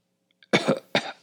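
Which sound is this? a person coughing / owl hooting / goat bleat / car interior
a person coughing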